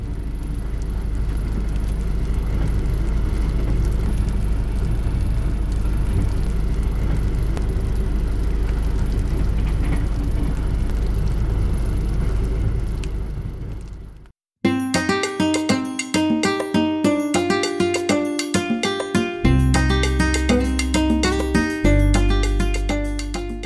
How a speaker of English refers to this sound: Excellent journeys. I'll leave you with the train in the rain.